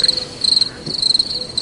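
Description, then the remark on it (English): A cricket sound effect: crickets chirp in a rapid, high-pitched pulsing trill that repeats in short bursts, steady, with no voices or other sounds around it. “I got the cricket sound effect going.”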